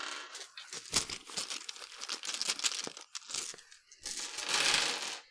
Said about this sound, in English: That's me getting all my dice, not rolling a huge amount.